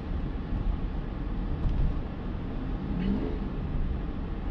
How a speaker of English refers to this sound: Sorry, there's a diesel truck in front of me. He just spouted a cloud of smoke in front of me.